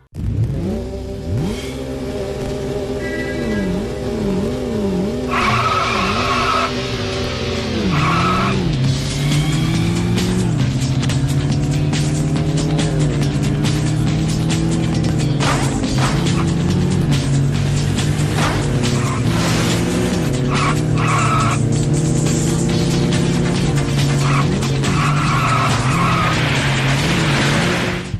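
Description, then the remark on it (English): Cars in the racing video game Sega GT skid and rev continuously, engine tones rising and falling in pitch while sharp tire squeals cut in repeatedly, loud and steady throughout, with no talking. “So this is Sega GT.”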